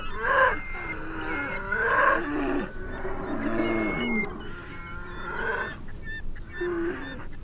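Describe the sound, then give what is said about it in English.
Two bears, one quite big with huge shoulders and broad hindquarters, roar and growl at each other in a loud, continuous brawl, with harsh, overlapping bellowing calls that rise and fall throughout, with no talking. “Here's another little altercation between the two bears.”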